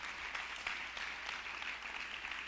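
An audience claps steadily for a few seconds, clapping their hands unto the Lord, a dense wash of many hands together with no voices over it, even from start to finish.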